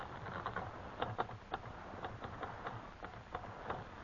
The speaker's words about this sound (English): Now, let me hit that typewriter for a minute.